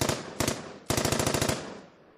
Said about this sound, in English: And before you know what's going on, you just hear machine gun fire.